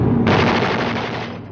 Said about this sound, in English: We see right after he says goodbye, we see the nose of a bomber as it raids ships. We see out of the bomber flying over the ocean, bombing and shooting as it flies around.